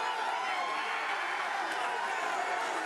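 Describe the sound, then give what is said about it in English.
A wrestling crowd cheers for Mark Briscoe in a dense, steady roar of many voices, loud and unbroken throughout, with no single speaker standing out. “Look at the fans! Listen to the fans!”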